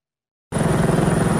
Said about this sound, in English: Dramatic helicopter rescues in California. Emergency crews rescued this woman while fighting high winds and heavy rain.